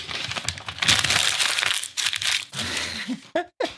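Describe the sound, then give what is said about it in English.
Paper is crumpled in a loud, continuous burst of crinkling and crackling for about three seconds, followed by a couple of brief vocal sounds. “Oh, the classic paper crumb.”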